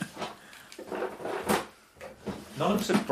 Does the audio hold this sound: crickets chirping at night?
no